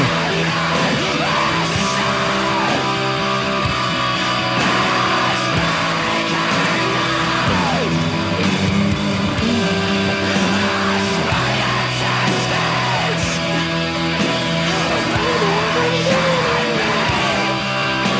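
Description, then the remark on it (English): A person screams loudly and continuously, a raw, strained yell that stays dense and intense for the whole stretch, with no pauses and no other talking. “My throat hurts listening to this.”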